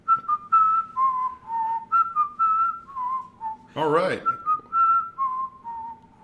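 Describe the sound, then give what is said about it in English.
Someone whistles the Jurassic World theme, a slow, sustained melody of long held notes, briefly interrupted midway by a short burst of talk before the tune resumes. “Followed by like Jurassic World Whistling Corner.”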